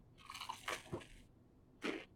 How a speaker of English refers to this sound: Should I do a big crunch of this bread right into the mic?